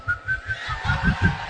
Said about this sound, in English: Even when you are not happy, you whistle around.